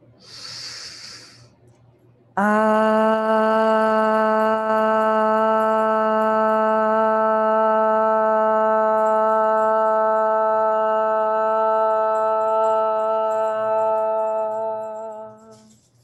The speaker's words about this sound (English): Breathing that light in. Here we chant, ah.